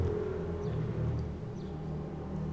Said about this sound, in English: And I gotta wait for this motorcycle to fly to drive by, because it makes a lot of noise.